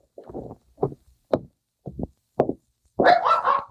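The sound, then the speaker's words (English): A friendly pup barks in a quick series of short, sharp yaps with brief gaps between them while jumping up on a man, ending in a louder, longer burst of excited barking. “Hey, quit jumping on me. Friendly little cuss, aren't you?”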